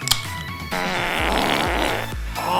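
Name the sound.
fart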